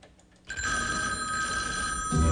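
After a brief quiet moment, a telephone bell starts ringing, a loud, bright metallic trill that holds steady for about two seconds, with a low thump near the end. No one speaks.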